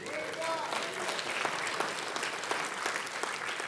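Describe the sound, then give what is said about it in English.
A church audience claps to the Lord, a dense, continuous patter of many hands at an even loudness, with faint voices mixed into the applause. “Right there deserves a hallelujah, an amen, maybe even a clap to the Lord, right?”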